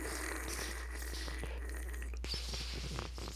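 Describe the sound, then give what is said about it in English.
A voice imitates slowly sipping from a can: a steady, breathy slurping rasp lasting about three seconds, flecked with small wet clicks, with no talking. “But you know the sound when you're, like, slowly sipping from a can?”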